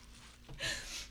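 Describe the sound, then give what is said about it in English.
A brief burst of crisp crunching as someone bites and chews a crunchy, salty seaweed snack of an Asian brand, with the crackly texture lasting about half a second and no talking. “So I just and I store them in my desk. I mean, they don't go bad. Uh-uh. And they're crunchy.”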